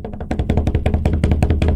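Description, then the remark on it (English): Rapid, steady thumping of hands beating on a table like a drum roll, a dense run of low, dull hits with no talking over them. “It probably just sounded like thumping, but I tried to beat the table for you.”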